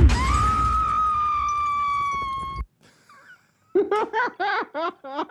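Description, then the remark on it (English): A female cartoon character's long, loud, shrill scream as she flies out of a window holds one steady pitch for over two seconds and cuts off abruptly. After a brief near-silence, rhythmic bursts of laughter follow. “Well, here is that scream.”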